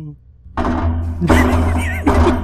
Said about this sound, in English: I knocked over my water bottle.